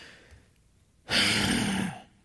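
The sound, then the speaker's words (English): A single loud, exaggerated huff: one forceful, breathy exhale lasting about a second, after a moment of near silence and with no talking. “Maybe a huff, a heavy breathing at the door.”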